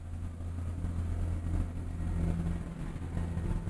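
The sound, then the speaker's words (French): A tractor engine drones steadily in a low, rumbling idle, with strong harmonic bands at the bottom and a constant hiss above, holding the same level with no voices. “J'entendais un drôle de bruit, c'est un tracteur.”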